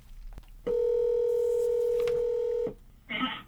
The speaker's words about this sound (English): Here, we're going to go ahead and click the button, and it says calling. Calling, calling. Now it's ringing.